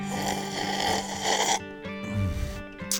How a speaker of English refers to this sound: The cup is full. Could you tell? It's right at the top. Yeah, I couldn't even hardly hear a slurp out of that. It's slurping. It's slurping. Our listeners will hear it. It's slurping good. But yeah, right at the top.